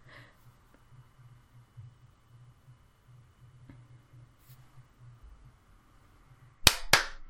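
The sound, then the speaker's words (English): After several seconds of faint low hum, two sharp, loud hand claps snap out in quick succession, like a sync clap marking a recording's start. “Can we clap at 50?”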